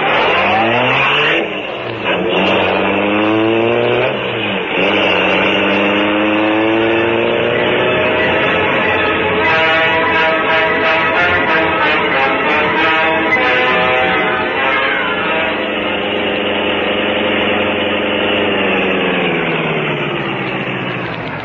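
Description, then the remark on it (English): A car engine runs loudly for the whole stretch, revving up and shifting in pitch as the vehicle accelerates and drives off, with no voices. “You take the car around to the rear.”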